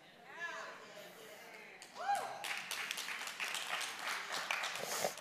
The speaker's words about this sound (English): Y'all are clapping, but that's for you too. That's for every single one of you.